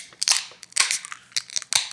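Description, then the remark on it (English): A beer can being opened: a few sharp, crunchy metallic cracks and brief fizzy bursts spread over two seconds, with no one talking. “All right, so let's grab our glass, grab our beers, and let's open her up.”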